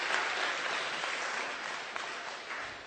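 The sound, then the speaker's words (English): A crowd gives a man a round of applause, clapping steadily for about three seconds, a dense, even crackle of many hands at a fairly loud level with no voices over it. “Why don't you just give him a round of applause?”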